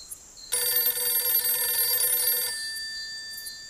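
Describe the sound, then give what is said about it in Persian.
A telephone bell rings loudly at 1 o'clock as a sister phones. It rings in one continuous two-second burst, bright and metallic with a rapid trill, then stops abruptly, leaving a faint high hum. “ساعت 1 بعد نشدم که خواهرم تلفن میکنه که فلان کس میدونی چه خبر شده؟”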